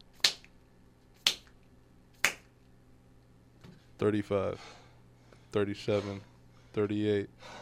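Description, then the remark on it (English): Three sharp, crisp hand claps sound about a second apart during clap push-ups, fairly loud, followed by several short bursts of a voice, like strained grunts or counting. “35, 37, 38, 39, 40 clap push-ups.”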